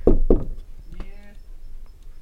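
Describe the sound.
Two loud knocks on a door in quick succession, followed by a brief voiced sound.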